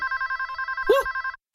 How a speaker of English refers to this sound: One dark, quiet night, while everyone in town was fast asleep, the telephone at the police station started ringing.